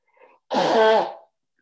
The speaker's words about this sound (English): Grab a Kleenex. I know I need one. You're going to get to hear me blow my nose.